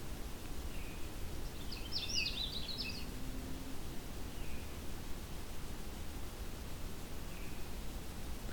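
A Canada warbler sings one quick, jumbled burst of high notes over a steady wash of hiss. A few faint, thin notes follow later.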